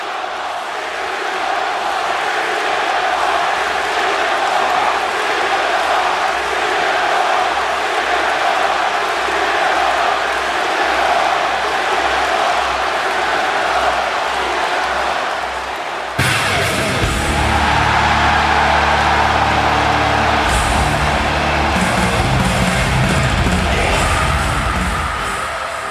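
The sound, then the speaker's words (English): A huge arena crowd in Chicago roars and cheers nonstop for CM Punk during a main event, with yells piercing the din, then deeper, droning tones swell into the noise about two-thirds of the way through, keeping it loud throughout. “And watching it again, God, the crowd in Chicago, one of the loudest I've ever heard.”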